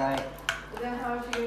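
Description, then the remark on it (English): A few sharp metallic clinks of pans and utensils, with a light scraping rattle as the first part of the rice is poured into a pan for tahdig, while voices murmur softly underneath. “First part of the rice is going for the tadik.”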